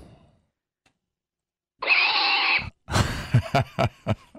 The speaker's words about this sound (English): That's a pig, dude. Oh.